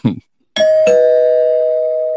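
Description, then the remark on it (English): A brief voice fragment, then a two-tone electronic chime like a doorbell, used as a spoiler warning bell sound effect, rings out loud, its bright tone sustaining and slowly fading to the end. “Can I read the spoiler bell, and you can tell me what it is?”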